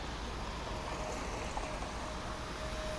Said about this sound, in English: Well, I think we'll start with some city streets, some cars going by.